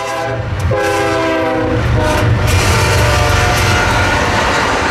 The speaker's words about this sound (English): Our house was backed off onto a railway track. People would come to our house and say, how can you live like this? There's a train that goes by every 20 minutes.